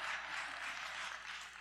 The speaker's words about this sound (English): Somebody clap.